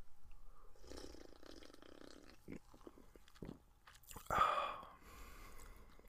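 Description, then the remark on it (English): Mouth sounds of someone sipping a freshly opened Diet Coke: soft wet clicks and a quiet slurp, then a louder gulp and swallow near the end, over a faint hiss. “I'm not sure how much of the fizz you can actually hear there, but I'm going to take a sip.”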